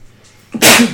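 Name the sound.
sneeze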